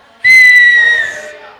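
A single piercing whistle bursts out from a gathered crowd, one long high note held for about a second before fading, with faint murmuring beneath it.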